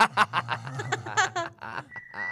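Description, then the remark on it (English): A voice speaks, then a steady, high-pitched whistle rings out for about half a second, holding one pitch with a brief break in the middle. “Wow, I got a whistle.”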